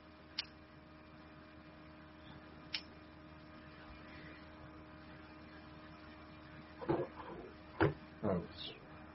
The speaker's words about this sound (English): Can you hear tapping? That's Dakota as he's tapping some.